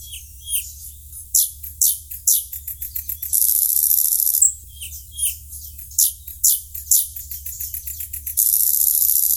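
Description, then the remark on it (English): A nightingale sings alone: rapid, varied phrases of sweet whistles, chirps and fast repeated trills, broken by two sustained buzzing passages, bright over a faint low hum. “It has a beautiful song that's been described as one of the most beautiful sounds in nature.”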